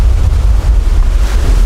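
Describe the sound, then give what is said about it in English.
Ocean waves rush and roar onto a beach, a loud, steady wash of surf mixed with heavy wind buffeting the microphone, continuous with no voices. “Excited to hit the beach with the boys, enjoy some of the waves, the weather, and the views.”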